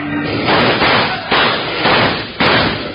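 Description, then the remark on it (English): A volley of loud, sharp gunshots as a gang of riders rides out of town with a stolen body: four or five blasts cracking out at uneven intervals, layered over a constant rush of harsh noise, with no talking. “Just about when Wild Bill Hickok and Jingles were going to ask the sheriff to identify the dead flame rider, a gang of riders stole the body and rode out of town in a hail of lead.”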